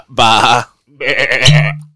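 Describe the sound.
A person mimics a lamb's bleat twice, a wavering nasal baa followed by a longer, quavering one, loud, with a short pause between them.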